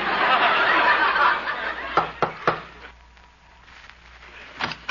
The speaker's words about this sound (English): I'll knock on the door.